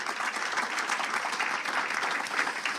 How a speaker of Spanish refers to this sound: Amén, amén y amén. Regálemele un aplauso al Señor.